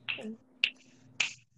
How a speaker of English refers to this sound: Yeah, just say ta-ta and do like a little finger snap, just snap in their face.